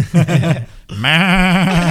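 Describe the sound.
A person imitates a goat's bleat: a short, pulsing nasal burst, a brief pause, then a longer, loud, quavering bleat with a trembling pitch.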